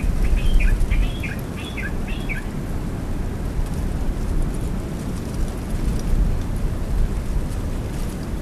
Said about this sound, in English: This is one bird. One bird. Not up, one species of bird, but just one bird. One bird up on top side.